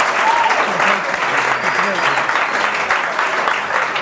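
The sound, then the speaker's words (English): Steady, dense audience applause for a segment fills the whole clip, a loud even wash of many hands clapping with a few faint voices murmuring beneath it. “Let's clap it up for this wonderful segment.”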